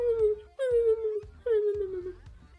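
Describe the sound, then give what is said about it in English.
A voice imitates a sad, whimpering dog with three drawn-out whines, each sliding downward in pitch, fairly loud, with soft low thumps underneath. “Is that your dog sound?”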